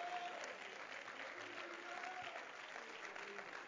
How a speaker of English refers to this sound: Clap your hands and let's give Him praise.